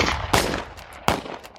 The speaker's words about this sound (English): With his right leg over the saddle, he looked at the gun barrels coming out from under cover, lining the streets as a volley of shots rang over him.